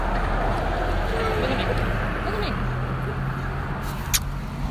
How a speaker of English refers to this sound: Oh, here's the bus.